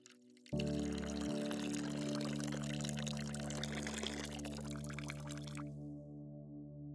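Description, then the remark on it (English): An energy drink pours steadily from a can over a grave for about five seconds, a continuous splashing stream that starts abruptly and then cuts off, leaving a low hum behind. “And I'll reach over and pick up the energy drink and pour it out over the grave.”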